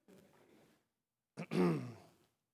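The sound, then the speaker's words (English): A voice fakes a throat-clearing cough, imitating the name of the Old Testament book Habakkuk: a soft breathy rasp, a brief pause, then a sharper, louder hacking burst that trails off into a voiced grunt. Fairly quiet overall. “It sounds like you need a cough drop, right? Habakkuk. Habakkuk. Excuse me while I Habakkuk.”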